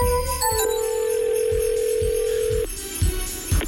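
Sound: telephone ringing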